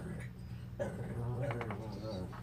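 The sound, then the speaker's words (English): A dog named Steve makes a few small, high whining noises in short bursts, soft over a low background hum. “Steve's tooting, by the way. That's common. When dogs look at me, they see something inside. He's giving his input.”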